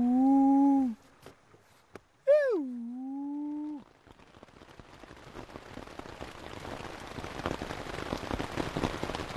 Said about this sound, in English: It's the end of the second week, and it's been pouring rain almost every night.